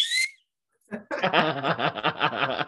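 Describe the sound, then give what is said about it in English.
A single short, shrill blast from a whistle worn as part of a Ted Lasso costume sounds at the start, followed by a brief pause and then a burst of loud laughter that continues to the end. “I got a whistle.”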